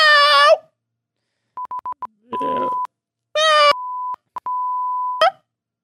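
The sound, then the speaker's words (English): Two loud cat meows alternate with electronic beeps: a quick run of short bleeps, a steady tone over a burst of static, and long flat beeps, with no talking. “But this is what cats sound like. That is what they sound like. When they open their little mouths, that's what comes out.”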